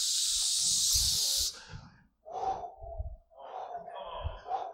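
A spray can of WD-40, sprayed onto an overturned rocking chair, lets out a loud, steady hiss for about a second and a half, then cuts off, followed by a few lower creaking, scraping sounds.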